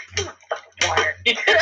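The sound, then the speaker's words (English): Noisy bursts of water splashing or spilling, coming in a few uneven gushes over a low steady hum, with brief quiet gaps between them. “Water. Oh my God, guys, look at in the video. Look at my water.”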